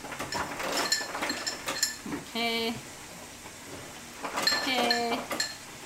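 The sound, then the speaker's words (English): Ice from a refrigerator dispenser clatters into a glass in quick bursts of bright clinks, with a short buzzing hum in between and another clinking rush near the end. “Cubed or crushed ice? Whatever comes out, because my fridge broke last week”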